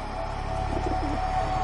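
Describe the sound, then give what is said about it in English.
A crowd of pigeons cooing together, their low, throaty burbling calls overlapping into a steady, dense chorus that stays constant throughout, with no one speaking. “That's not a flock of pigeons. That's an army.”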